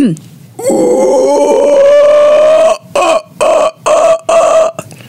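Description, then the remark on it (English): A person imitates a howler monkey call, starting with a loud, sustained, raspy guttural roar that breaks into about five short, rhythmic throaty bursts. “It sounds more of like somebody clearing their throat in the morning, but very loud.”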